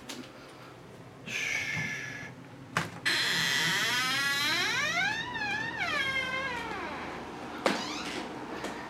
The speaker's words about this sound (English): Shh. Stupid creaky door.